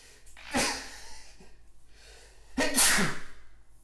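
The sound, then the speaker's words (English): Two loud sneezes about two seconds apart, each a sudden explosive burst of breath with no talking around them. “Just made me sneeze.”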